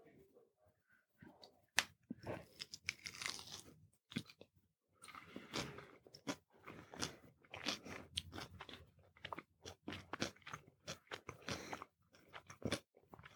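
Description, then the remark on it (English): Crisp crunching and wet chewing of fried chicken right at the microphone, with irregular loud bites and smacking across the whole stretch, no talking. “Sorry to chew into the microphone.”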